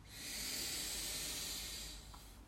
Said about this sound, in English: Last 3, a little bit more breath in. Big sigh out. 2 more. Inhale. Exhale. And 1 more. Inhale.